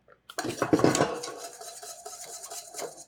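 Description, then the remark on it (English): A whisk scrapes and clatters rapidly against the sides of a metal pot, stirring a thickening cornstarch custard and cutting up its lumps, with a steady rhythm and no talking. “And with the whisk, I whisk. So I cut the lumps so that in the end it will be smooth.”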